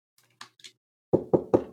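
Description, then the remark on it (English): Four firm, evenly spaced knocks on a screen door, fairly loud, preceded by a few soft shuffling or rustling sounds. “I'm going to go knock on the, I assume, screen door to the real door.”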